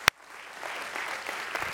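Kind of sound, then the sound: crowd, audience applause ovation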